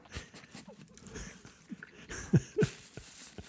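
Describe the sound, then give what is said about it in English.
A man chewing a veggie burger: soft, irregular wet munching and faint crunches over a quiet background, with two slightly louder bites near the end. No one talks. “He's chewing. He's chewing.”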